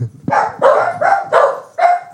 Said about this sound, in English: There's some dogs that are barking. I don't know if I'll edit that out or not. We'll have to see.